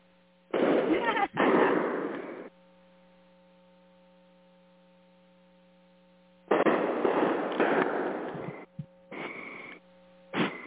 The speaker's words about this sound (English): Oh, and here I thought that they had set off all their fireworks and they were just waiting for it to get darker. Reloading their whatever they got going there. We can hear them for sure. Sounds like they're having the festivities.